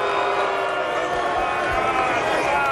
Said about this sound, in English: I don't know what everybody's booing about. Like, it either is or it isn't, right? Yeah, but still, anything that goes against the home team, you got to boo.